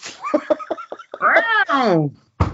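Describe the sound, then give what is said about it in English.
A box is shaken in a quick series of rattling knocks, then a human voice imitates a drawn-out, wavering cat meow, fairly loud, ending with a short burst of noise. “Just by shaking the box. I think you could probably trick a child into thinking there was a cat in the box still.”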